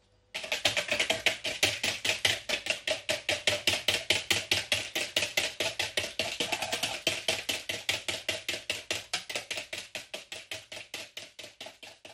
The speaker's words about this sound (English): The hart's horn, the water, the cream and the sugar. Whisk it up first with the sugar and then we'll gradually add the water to it and see what happens. We can just add it in drip by drip, can't we? Okay, yep, that's in. Shall I start whisking?